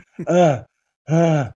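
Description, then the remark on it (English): A voice imitates heavy gasping for breath: two loud, drawn-out voiced gasps with a short pause between them, alone with no other talk. “By the time they got back in the dressing room, both of them were panting. I'm just talking gasping.”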